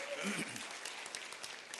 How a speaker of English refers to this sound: You may be seated. Clap your hands and be seated today.